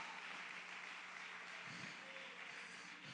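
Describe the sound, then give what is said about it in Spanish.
An audience at a church service applauding the Lord together, a steady wash of many hands clapping that holds evenly for the whole few seconds. “Denle fuerte aplauso al Señor con todo el corazón, aleluya.”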